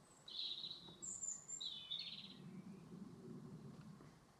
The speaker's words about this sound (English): We have the battle between, well, some rivalry between two birds and one aeroplane. I hope the birds are winning. So long since we heard aeroplanes, I think that the birds are emboldened.